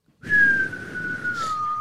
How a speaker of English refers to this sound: Ish, I failed to whistle. Let me try again.